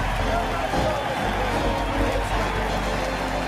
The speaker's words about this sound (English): And the crowd went wild. He aced the pitch. Coming from the baseball family. And the chants of USA, USA, USA.